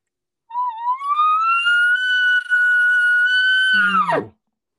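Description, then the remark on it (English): A soft, low-key imitated elk call, made about 100 to 150 yards from where the elk are thought to be: one whistling tone slides upward, holds steady for about three seconds, then drops sharply into a brief low grunt at the end. No talking. “Something like this here.”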